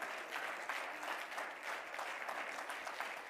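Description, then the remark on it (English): An audience claps hands together in dense, steady applause to praise God, many overlapping claps forming a continuous bright wash with slight rhythmic pulses throughout, no clear voices on top. “Come on, clap your hands and praise God together.”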